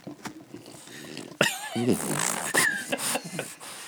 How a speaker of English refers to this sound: briefly interject, my French bulldog is snorting audibly right now.